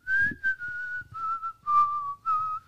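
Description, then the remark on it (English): A person whistles a short tune, the clear notes gliding and stepping between pitches in a few connected phrases, with no talking around it. “And as the car falls down, he hears someone whistling.”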